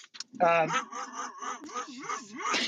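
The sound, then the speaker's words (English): A female dog barks sharply and loudly, then keeps up a run of agitated, wavering yelps and whines for a couple of seconds. “sorry, my dog's losing her mind.”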